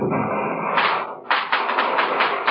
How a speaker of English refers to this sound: What's that? The fireworks! The fireworks!